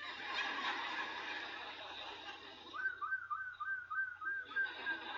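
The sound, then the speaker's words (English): A human voice imitates bird calls, starting with a noisy hissing squawk, then a string of quick, repeated whistled chirps that rise and fall, loud, with no words spoken. “Everywhere I go, I hear those damn birds.”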